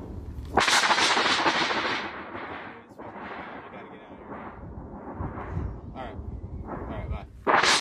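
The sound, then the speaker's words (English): A sudden, loud thunderclap from a lightning strike bursts in with a sharp crack as rain begins, then rolls on as a long, rumbling boom that slowly fades, with another abrupt loud crack at the very end. “It's starting to rain and thundering hard. Shit, that was lightning.”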